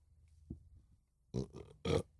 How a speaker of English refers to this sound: Oh my God, I'm burping up everything.